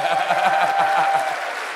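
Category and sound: crowd, audience applause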